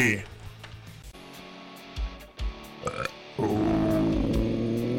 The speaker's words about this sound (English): Oh, yeah. He burped on the mic. Belch. Belch.